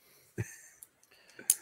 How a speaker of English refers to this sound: Our click pens are in, so we can counter that noise. Look at this. We're well armed now.